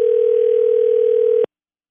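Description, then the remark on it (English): A steady telephone dial tone hums loudly and evenly for about a second and a half while a call is being placed, then cuts off abruptly into silence. “Let me get him on the line.”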